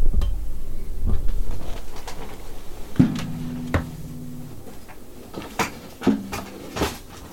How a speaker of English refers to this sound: Just knocked everything over to get this.